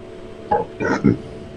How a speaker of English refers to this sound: Did he just vomit and burp at the same time? Yeah, I think he did. Doing a little recycle there.